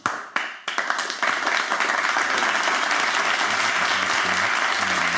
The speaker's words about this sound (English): Give me some claps or something.